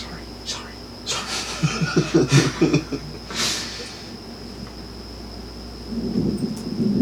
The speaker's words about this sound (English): Uh-oh. It's thundering out. I'm afraid of thunder.